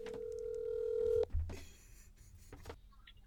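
A telephone call tone of a call to a friend hums steadily for just over a second, then cuts off with a sharp click and thump as the line picks up, followed by faint crackly line noise.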